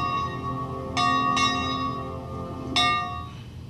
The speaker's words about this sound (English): So you saw the bell ringing in the end.